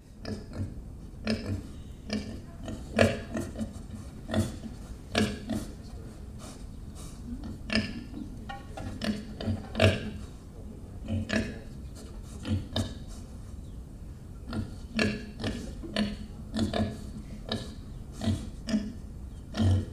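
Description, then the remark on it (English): Pigs grunt and oink steadily, a busy overlapping series of short snorting calls with some rustling and shuffling, no one speaking. “I couldn't find the same pigs, but I did find some other pigs. So these pigs are pretty good.”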